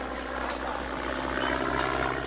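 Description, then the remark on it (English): A steady propeller-plane drone of an airplane towing a sign advertising a column holds a constant low hum with a broad rushing wash above it, no voices, swelling slightly toward the end. “It was an airplane towing a sign advertising his column.”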